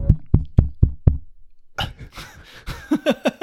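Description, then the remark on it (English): Five quick, evenly spaced thumps tapped right on a microphone, imitating a loud knock at a door, followed after a short pause by laughter and vocal sounds. “Good knock. You tap on your microphone loudly.”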